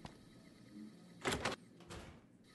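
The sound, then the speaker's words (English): A video game door to the Atomic Wrangler opens with a short creak and a heavy clunk, followed by a softer sliding thump, fairly loud against a quiet background hum. “The door to Atomic Wrangler took me inside a room.”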